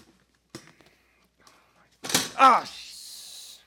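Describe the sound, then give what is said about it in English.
A chair being moved and turned over: a few faint knocks, then a loud clatter with a squeaky scrape, trailing into a steady hiss. “Don't turn it upside down.”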